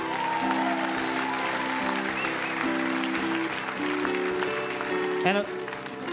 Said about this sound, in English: One more round of applause, if you will